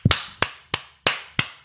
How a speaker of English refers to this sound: when two opposition fans, when two of the pundits come against each other, and the losing person must give the winning person a clap of honour.